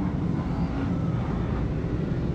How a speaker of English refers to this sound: And in what seems to be a theme of interruption and inconsiderate behavior, you may hear revving of engines and motorcycles and people who think they're pretty tough on my street. Here they go.